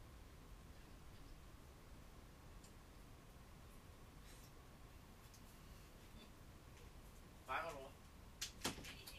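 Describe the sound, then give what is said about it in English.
A door opens as someone's mother comes into the room without knocking, against a steady low hum, with a brief rattling clunk followed moments later by two sharp clicks near the end, moderately loud. “Sorry for that quick pause, guys, but my mom just came in without knocking the door, so that is so frustrating.”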